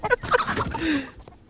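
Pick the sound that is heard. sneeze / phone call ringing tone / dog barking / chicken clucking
chicken clucking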